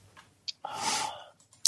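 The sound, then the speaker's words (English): A dog pants because of the heat in its house, in breathy, uneven bursts: a few short huffs and one longer raspy breath, with a couple of sharp clicks at the end. There is no talking. “Yeah, one of them's come down, panting his head off because it's so fucking hot in his house.”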